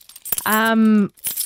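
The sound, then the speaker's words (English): Keys jangle in short metallic bursts as they are handed back to someone, before and after a brief sustained vocal sound from someone. “Kyle, here's your keys back.”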